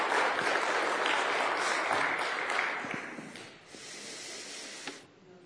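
A crowd applauds steadily, a dense hiss of many hands clapping that holds strong for about three seconds, then thins and fades to a lighter patter with a few stray claps at the end.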